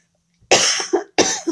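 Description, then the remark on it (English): Two loud, harsh coughs caused by seasonal allergies, the first longer and rattling, the second a short sharp burst after a brief pause, with no speech. “But I believe God, excuse me, sorry, I can't pause this recording, but I've got a cough.”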